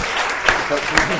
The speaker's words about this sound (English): Give him a round of applause because he's been phenomenal.